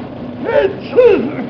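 A voice makes an exaggerated two-part sneeze, a rising drawn-out intake followed by a louder tonal burst that swoops up and falls away, fairly loud with no other talk.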